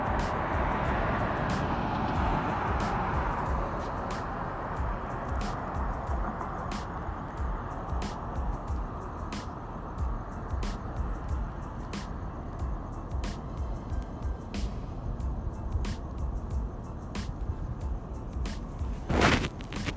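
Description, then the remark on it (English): Steady street traffic with buses rumbles in a continuous low roar while someone waits for a bus, broken by scattered sharp clicks and knocks, with no one speaking. “No, let me hop on this shit so I'm gonna wait for this goddamn bus.”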